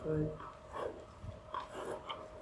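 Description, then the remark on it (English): A horse concerned during a riding lesson breathes in quick, uneven huffs and blows, moderately loud, with a short burst of a human voice near the start. “And I mean, you can hear by his breathing how it concerns him.”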